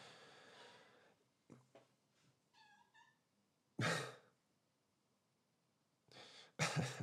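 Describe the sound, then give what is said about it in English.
A cat meows softly a couple of times, short quiet chirping calls, between louder breathy rustling bursts; no one speaks. “I guess my cat agrees that Mega Man 2 is the best fucking Mega Man”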